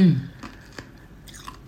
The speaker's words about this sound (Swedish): Så i alla fall, sluta tugga på isen, det är inte trevligt.